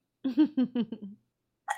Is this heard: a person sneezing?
yes